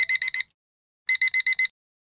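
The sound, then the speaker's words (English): An alarm clock rings in two quick bursts of shrill, evenly spaced electronic beeps, four then five, separated by a short silence, loud with no voices. “An alarm clock.”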